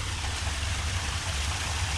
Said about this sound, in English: I got my recording gear and wandered away back towards Falls Creek and found this really awesome park. As you can hear, it's got some really wonderful little stream with a nice little waterfall.